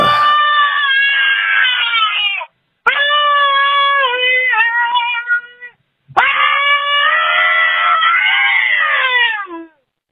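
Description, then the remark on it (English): Three long, loud, high-pitched rock-style vocal screams, each held for a couple of seconds and sliding downward in pitch, with brief pauses between them, sung alone without a microphone by a person who is driving. “That was the best scream in my head. I'm driving, so I couldn't quite do the … vocals”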